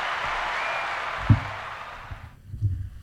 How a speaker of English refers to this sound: Woo! Give me some applause for that. Love it.